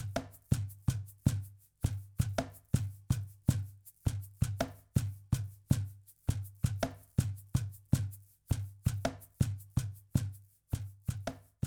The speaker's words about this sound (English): Next, I laid down a cajon and shaker.